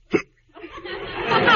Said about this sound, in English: I can't sleep while you're hiccuping like that. Well, I'm sorry, but I can't help it.